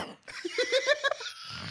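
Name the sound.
person imitating a growl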